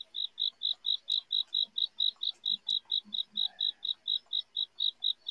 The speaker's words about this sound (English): Crickets. I hear crickets. Me typing. No, I mean, really, I hear crickets. Yeah, for real. I was actually going to tell you to turn around and tell them to shut up. They was too loud.